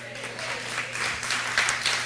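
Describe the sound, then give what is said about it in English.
A short burst of scattered hand clapping from a small group, steady and moderately loud, filling the whole moment with a faint hum underneath. “It's not very long, so you don't have to clap for me, but we got to enjoy the beach, and we still worked a half day.”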